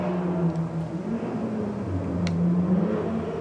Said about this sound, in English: There's our friend the motorcycle man.